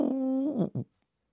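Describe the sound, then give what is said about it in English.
A low, hollow cooing from a wood pigeon: one drawn-out, steady note that dips, followed by a short second coo, heard clearly with no talking. “That is a wood... Wood pigeon. Yeah, no, but that is a very distinctive sound.”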